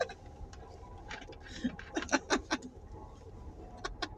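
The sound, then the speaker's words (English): Birds make short, sharp chirping and fluttering bursts as they come down to bread thrown out for them, clustered loudest in the middle, over a steady low outdoor rumble. “Bird gonna come down.”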